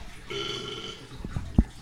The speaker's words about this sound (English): I burped.